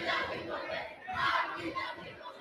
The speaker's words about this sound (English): 20 seconds left. Student section going nuts over there.